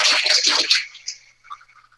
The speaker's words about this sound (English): And here, he gonna flush the toilet, and there goes the gork.